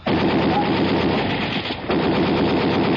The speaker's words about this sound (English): Keep the windows covered. I'm going to blast the lock on the door.